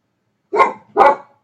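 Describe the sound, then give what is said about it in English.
A dog in a hotel room gives two loud, sharp barks about half a second apart at somebody at the door, each with a rough, mid-pitched bark and a brief tail. No one speaks. “So there was somebody at the door. Now the other dog is going.”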